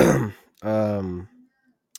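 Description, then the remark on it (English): A single rough cough bursts out and is followed by a drawn-out voiced throat sound, like a low groan or clearing, then a tiny click before silence. “Oh, I got a cough.”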